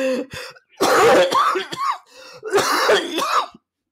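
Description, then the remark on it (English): A man coughs and clears his throat in two harsh, raspy bursts, with a brief pause between them and short throaty sounds at the start. “Really got to stop coughing here.”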